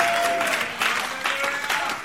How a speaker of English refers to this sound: And it says, Brother Branham claps his hands together. Amen. We should do that too.